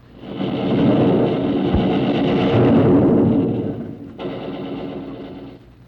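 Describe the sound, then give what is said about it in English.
A thunder sound effect played as a quiz clue for a day of the week: a long, loud rolling rumble that swells, fades, then a second crack of thunder breaks in and trails off. No one speaks. “Well, that was thunder, and that would be the god of thunder, Thor, and the day of the week that's named after him is Thursday.”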